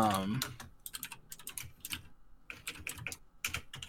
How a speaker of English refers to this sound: All you people with your loud-ass keyboards. You know, I'm looking it up. You know it's miserable for me to listen to this and edit when I hear all this.